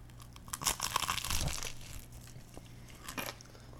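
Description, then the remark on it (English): Loud crunching bites into crispy breaded fried chicken, a dense cluster of crackly crunches early on, then quieter chewing and one more crisp crunch near the end, with no talking. “Yep. Lots of crunch. Yep. Sound like you're biting bones over there.”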